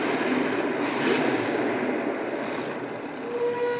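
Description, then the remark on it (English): An original train whistle sounds during Alan Gaines's truck run at a truck show, with a thin, steady high tone over the dense, continuous roar of a large crowd, the whistle emerging more clearly toward the end. “There's the whistle. Is the original.”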